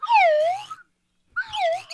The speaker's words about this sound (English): The slide whistle.